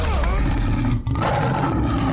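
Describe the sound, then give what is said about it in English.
A loud tiger roar, a deep rumbling growl that fills about two seconds with only a brief catch in the middle before surging again. “What a great Tiger.”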